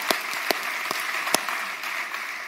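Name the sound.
audience applause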